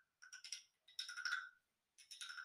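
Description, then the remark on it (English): Frogs croaking in a chorus in the village of Necoclí in the early hours of the morning after rain: three bursts of rapid, rattling pulses with brief pauses between them, fairly quiet, with no voices. “The village was deserted, and as we walked to our hotel, a symphony of frog croaks rumbled through the air.”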